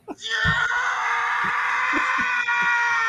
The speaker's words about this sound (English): they used this soundbite and they kept it in like Fox's closet for a while, and they've used his scream in countless other films since. Yeah. Okay. So it's now it's like this sort of Wilhelm scream.